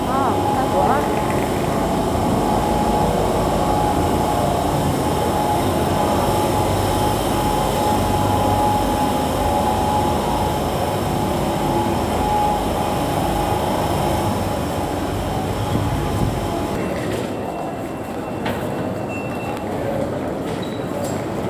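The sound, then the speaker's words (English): A train pulls away from Liverpool Street Station with a loud, steady, heavy rumble and mechanical roar that holds for about twenty seconds, with indistinct voices mixed underneath. “There's actually a train leaving about now.”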